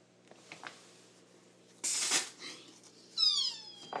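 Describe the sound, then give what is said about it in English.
A shaken fizzy drink bursts open with a sudden loud, hissing spray lasting a moment, followed by a brief high squeaky whine sliding downward in pitch. “It just sprayed. Just like. It's because it was full of the carbonation and I shake it.”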